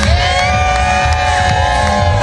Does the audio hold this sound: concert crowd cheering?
yes